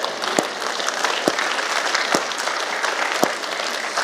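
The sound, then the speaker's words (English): Two people at the Grove Church clap steadily to celebrate its five-year anniversary, a dense patter of applause with several sharper, louder claps standing out every second or so. No one speaks. “So today is our, in essence, five-year anniversary as a church, and it's something worth celebrating for the two people that began to clap.”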